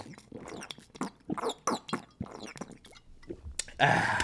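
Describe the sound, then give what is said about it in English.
Someone drinks water: a run of wet, irregular sips and swallows with small mouth clicks, ending in a louder breathy burst as they finish. “Let me take a drink of water.”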